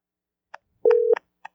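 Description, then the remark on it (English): A phone call being placed: a few sharp clicks spaced out, with a single short steady electronic tone in the middle. It is clear, with no voices. “You're calling Corey 3 times”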